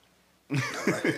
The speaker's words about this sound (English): Why you coughing so hard?